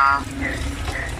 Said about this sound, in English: They're fighting. Bullfrogs are fighting. You hear that? Are you sure this is not the sweet sounds of frog mating? Could be frogs mating. Let me do a check on that. Whoa, yeah, it is. All right. Two frogs fighting.